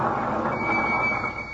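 A car engine runs with a steady, rough, knocking rumble as it pulls in, a thin whine riding above the noise, which eases slightly at the end. No one speaks.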